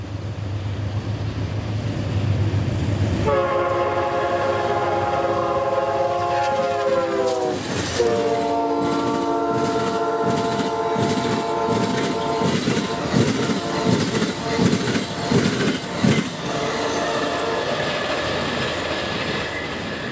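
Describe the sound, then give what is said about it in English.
A train leaving Glacier Park rumbles steadily along the rails as it crosses the Two Medicine River on a high trestle bridge. It makes a low, continuous roar, then a loud multi-tone horn sounds in long held blasts over rhythmic clattering of wheels on track joints. “On leaving Glacier Park, we cross the Two Medicine River on a high trestle bridge.”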